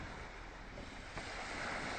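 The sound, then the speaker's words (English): Steady, full wash of waves and moving water surrounding a boat, with a constant rushing texture and a slight swell in loudness partway through. No voices. “We're on a boat.”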